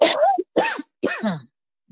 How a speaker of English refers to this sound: I rebuke that cough in the name of Jesus.